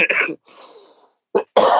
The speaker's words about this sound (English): You can edit out my coughs.